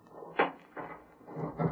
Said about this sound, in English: Open the door. Just wait till I unlock it.